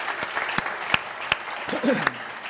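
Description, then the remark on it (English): A church audience applauding to celebrate parking spaces provided across the street from the church, a dense steady wash of many hands clapping with a few sharper individual claps standing out, while a voice briefly calls out near the end. “Maybe just as a little act of worship this week, every time you find a parking spot, just start clapping again.”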